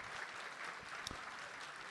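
An audience claps steadily, a dense even wash of many hands with no pauses, one slightly sharper clap standing out briefly partway through.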